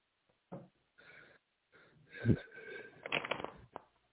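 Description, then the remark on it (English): A deck of tarot cards being shuffled: a few short papery riffles, then a longer, louder flurry of snapping and sliding, ending in a quick tap. “Okay, one more shuffle and see what comes out for our dear Nathaniel.”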